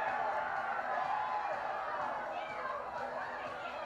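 A crowd cheers and roars in a dense, steady wash of many voices, holding at a fairly even loudness for about four seconds with no single speaker standing out.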